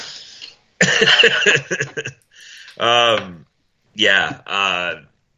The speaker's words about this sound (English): I paid $13.50 per pack for this fucking cough. I earned my right to cough wherever I am.